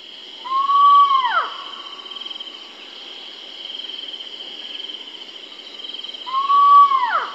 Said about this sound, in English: I could not find a recording of the call of the giant Indian flying squirrel, but I could find a recording of the call of this spot-bellied eagle owl. Great. Whom the squirrel is purported to sound like.